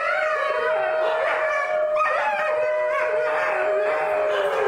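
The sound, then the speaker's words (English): Several captive New Guinea singing dogs howling together in overlapping, sustained wavering tones with pitch slides, a steady chorus filling the whole stretch without any talking. “McIntyre has also studied the Highland wild dog's captive cousins, the New Guinea singing dog. You're listening to them right now.”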